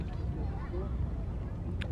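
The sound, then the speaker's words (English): A boat engine drones steadily, a dense low rumble that holds even throughout, with faint murmuring voices mixed into the noise. “Wow, we love the gas from this boat.”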